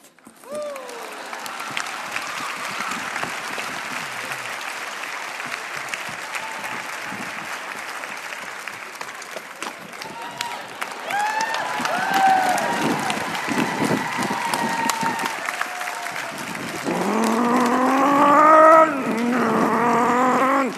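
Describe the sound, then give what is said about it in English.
A crowd breaks into sustained applause, a dense steady clatter of clapping that swells louder toward the end with whoops and excited cheering rising over it. “Singles, this sign, I'm going to turn around, is so important that I want you to just to go crazy when I turn it around. I want you to clap.”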